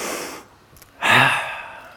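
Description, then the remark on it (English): An audience, told to take a deep breath and breathe down low, draws a deep breath together, a soft airy rush followed after a brief pause by a louder, fuller collective exhale, with no talking. “Everyone just take a deep breath, but I want you to breathe down here.”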